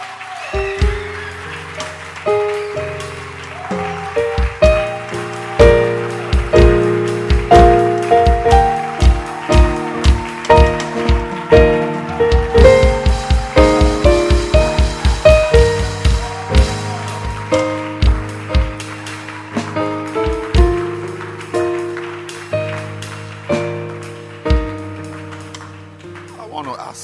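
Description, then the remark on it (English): A church audience claps hands for the Lord in a steady rhythm along with upbeat music, with bass and keyboard tones under the sharp, even claps, which speed up into a quick, dense run midway. “Can you give the Lord another hand clap?”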